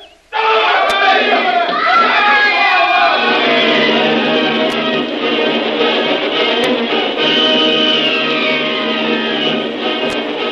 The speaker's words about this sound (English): Suddenly, the slender ropes holding the frail native bridge together pulled away from the rocks. There is a scream of terror from the natives as the bridge suddenly collapses and its occupants are hurtled 150 feet into the swirling waters